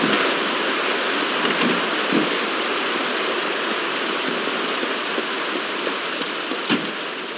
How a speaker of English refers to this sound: It crashes into a fire hydrant and water starts spewing everywhere.